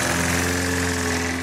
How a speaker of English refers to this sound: And today, the lawnmower started.